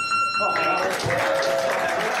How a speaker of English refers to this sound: Is that the whole thing? Why are they clapping?